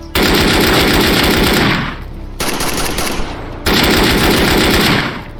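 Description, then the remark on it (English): Rapid automatic video game gunfire rattles in loud, sustained bursts with a brief drop between them, the rounds firing in a fast, steady rhythm with no voices over it. “We heard shots coming from construction side, so that's where we're heading first now.”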